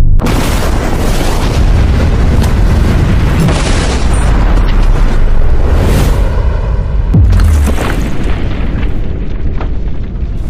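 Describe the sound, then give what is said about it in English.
A massive explosion of explosives packed around a safe roars with a sustained, thunderous low rumble and crackling debris for several seconds, loud, with no voices heard. “This safe is now surrounded by $100,000 in explosives.”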